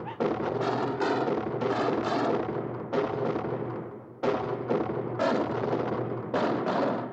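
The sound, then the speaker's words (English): Loud, heavy booming bangs from a horror film score strike several times at uneven intervals, each crashing in abruptly and ringing out densely before the next hit. “And the whole motif in that movie is the idea that she, when she's in bed, she keeps on hearing this banging, and the banging is the score, which is also supposed to be the soul of the house terrorizing her.”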